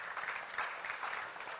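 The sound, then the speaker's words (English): A crowd claps steadily at news of a $3.66 million two-year funding commitment, a dense patter of many hands at moderate loudness that swells slightly in waves and continues without any talking. “So yeah, you can clap about that.”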